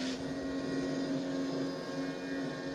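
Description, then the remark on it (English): A steady, droning engine of a seaplane flying overhead, a true water plane rather than a pontoon plane, hums continuously with a strong low tone, fairly loud, with no voices over it. “It's a true water plane. It's not a pontoon plane.”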